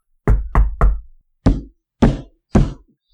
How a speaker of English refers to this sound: Oh, look, there's a little sign over there. Oh. Oh, yeah, so there is. Balthazar Thieves Guild. I guess we found it. I'll knock on the door.